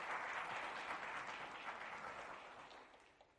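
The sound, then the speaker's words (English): A crowd gives a hand clap of praise to the Lord, a dense, steady burst of applause that starts strong and gradually fades over a few seconds, with no voices audible. “Somebody give him a hand clap of praise today.”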